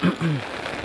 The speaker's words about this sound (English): Oh, it's raining a lot.